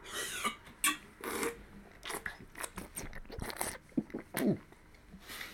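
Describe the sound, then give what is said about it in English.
Loud eating noises as someone sips and eats ramen: irregular wet slurps and crunchy chewing bursts scattered over several seconds, with brief pauses between mouthfuls and no talking. “Let me just take a sip of the ramen that's got the marble in it.”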